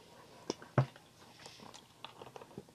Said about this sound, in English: Excuse me while I drink some water so I don't cough in your guys' ear again.